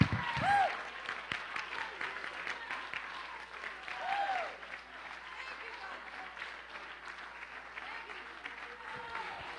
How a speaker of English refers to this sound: Clap your hands and give God all the praise.